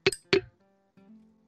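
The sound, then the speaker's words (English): Two quick, bright clinks of shot glasses of Jameson whiskey tapping together in a toast, each ringing briefly, followed by a faint, low resonant hum that fades out. “poured myself a good shot here, and I'm gonna salute him as I do it.”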